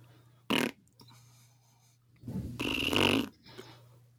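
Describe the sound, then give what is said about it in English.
Someone imitates hot tub bubbles with their mouth: a short, sharp burst, then a longer, rattling, blubbery blow, with a low steady hum underneath. “I'll make the bubbles.”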